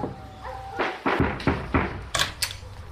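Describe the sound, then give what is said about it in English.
Half a dozen loud knocks on a door by two porn stars in a New Zealand ad, struck in uneven clusters with short pauses between, with no voices, only a faint steady hum underneath. “Until two naked porn stars came knocking.”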